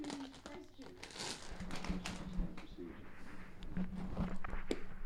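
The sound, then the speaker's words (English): A plastic bag of M&M's chocolate candies crinkles and rustles in irregular, crackly bursts for several seconds, moderately loud, with a low hum or murmur running underneath. “I'm going to eat some M&M's.”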